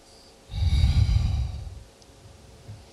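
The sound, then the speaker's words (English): A single heavy, drawn-out breath voiced into the mic, imitating the hiss of a mechanical respirator, swelling for about a second before trailing off into quiet. “because as you popped on, do you know, I heard breathing. Mine? No, it went like this.”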